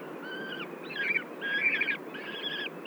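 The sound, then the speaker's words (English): Several owl fledglings give raspy, trilling food-begging wail calls in late June, at the very end of the season, about four drawn-out calls overlapping in a steady, insistent sequence over a low background rumble; the calls are more raspy and trilly than the adult wail. “I hear a bunch of fledglings giving that kind of food bag whale call.”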